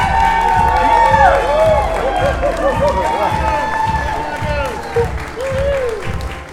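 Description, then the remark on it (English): Wedding guests clap and cheer steadily as the groom walks in, mixed with lively hip music carrying a rhythmic beat and melodic tones, with scattered voices in the background. The wedding is held inside on a rainy, humid day. “The groom just walked in. Everyone's kind of applauding.”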